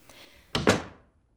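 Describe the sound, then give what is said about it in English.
A door shuts with two quick, solid thumps close together, the latch catching right after the first impact, followed by a brief fading resonance and quiet. “Close the door, please”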